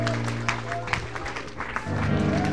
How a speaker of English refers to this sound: Let's clap our hands to the Lord and make Him feel welcome. Come on, all over this house.